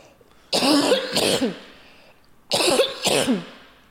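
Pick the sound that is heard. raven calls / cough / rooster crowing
cough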